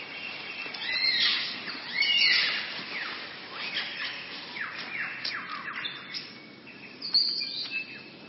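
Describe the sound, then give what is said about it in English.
A superb lyrebird of southern Australia sings a rich, varied stream of calls, with rapid chirps, sweeping whistles and sharp notes tumbling over one another, steady throughout, with no voices. “What bird has the most elaborate, the most complex, the most beautiful song in the world?”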